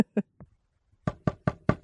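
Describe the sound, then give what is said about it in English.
Knuckles rap a patterned secret knock on a door: three quick uneven knocks, a brief pause, then four firm, evenly spaced knocks, crisp with no voices. “I bet they had a secret knock, too.”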